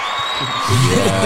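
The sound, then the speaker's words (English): A crowd claps steadily in a dense wash of applause, and about halfway through loud cheering and a whooping voice rise above it. “So in your transition, well, first of all, let's give this man a clap offering for being real.”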